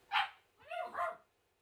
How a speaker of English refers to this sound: I'll let the little one bark. That's fine.